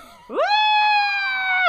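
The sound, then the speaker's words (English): A single long, high-pitched scream into a pillow rises sharply and holds steady for over a second before breaking off, loud, with no talking around it. “is screaming into a pillow.”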